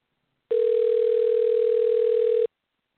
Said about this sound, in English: Well, if they are still open, they're very slow to get to the phone.